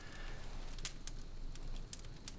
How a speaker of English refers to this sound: You made a campfire.